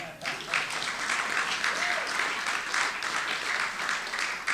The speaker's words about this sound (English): Now you can applaud.